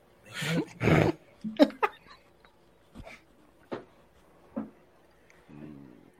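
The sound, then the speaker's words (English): A dog growls and vocalizes in a series of short, gruff bursts, loud at first and then scattered and quieter, ending with a drawn-out grumbling whine. “I think you're going to have to get that dog a mic.”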